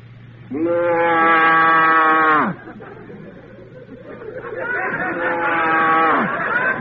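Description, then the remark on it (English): A man imitates a cow with two long, drawn-out moos, each rising then sagging in pitch, with a short pause between and murmuring crowd noise under the second. “Give us the cow.”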